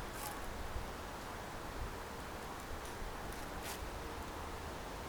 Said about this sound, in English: You might hear Yoro's feet in the leaves there.